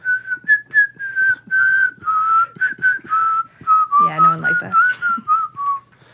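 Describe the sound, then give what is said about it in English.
A person whistles the American Horror Story theme tune alone, a string of clear, sustained notes rising and falling in a steady rhythm, fairly loud, with a brief voiced murmur near the end. “And I've been walking around work whistling the...”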